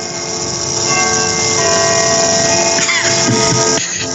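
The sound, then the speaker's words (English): A grandfather clock chimes at night, its loud, overlapping bell tones ringing and sustaining steadily throughout with no voices present. “God bless that grandfather clock.”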